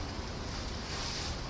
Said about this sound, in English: I don't actually see rain falling, though. But that sure as hell sounds like rain. Oh shit! And the wind picked up and everything.